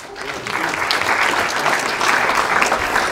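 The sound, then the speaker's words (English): A steady wash of audience applause before a presentation, many hands clapping at once in a dense, crackling texture that stays loud and even for a few seconds with no voices rising above it. “I will take applause before a presentation.”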